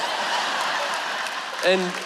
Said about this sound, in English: Okay, stop clapping.